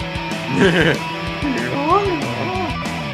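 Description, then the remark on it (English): A guitar imitates a donkey's bray with loud, wailing bent notes that slide up and down in a few braying phrases, prominent over a steady rhythmic pulse underneath, in a guitar solo at the end of a song. “sounds the donkey made.”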